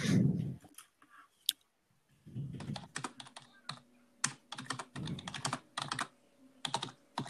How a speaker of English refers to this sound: There's something on that aggressive typing, though. Yeah, sorry, my friend messaged me.